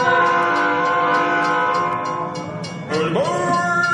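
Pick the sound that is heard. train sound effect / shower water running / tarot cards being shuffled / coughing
train sound effect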